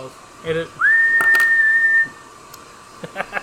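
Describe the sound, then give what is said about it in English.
Someone whistles a single sustained note lasting about a second, sliding up at the start, mimicking a whistling toot. Brief bits of voice come just before and after. “The problem is like, if you toot, it'll just whistle.”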